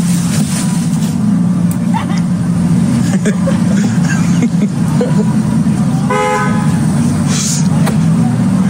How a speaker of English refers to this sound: They're getting in their cars. Yeah. Like J-Lo and Ben Affleck? Yeah, they're getting in, yeah. All right. Car rolls by. Did you hear it?